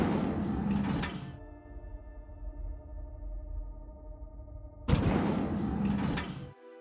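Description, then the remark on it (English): A loud mechanical whoosh of a lift door sliding, then a steady low electronic hum for a few seconds, and a second sliding whoosh that cuts off abruptly. No one speaks. “Even before the lift door opens, you can hear Skitter.”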